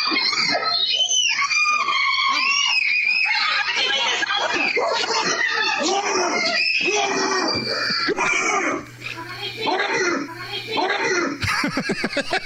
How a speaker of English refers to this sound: the bear shows up in the backyard of a family having a get-together, and you hear, like, the mom and the kids running around screaming, but then the dad comes in, saves the family, saves the dog, and starts growling at the bear.